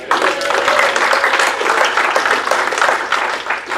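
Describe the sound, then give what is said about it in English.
Steady applause from a conference audience for Jeffrey Bradbury, many hands clapping in a dense, continuous wash that holds at an even loudness throughout, with no one speaking over it. “So clap for Jeffrey.”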